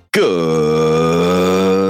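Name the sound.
burp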